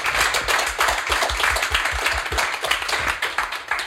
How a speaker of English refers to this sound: Round of applause.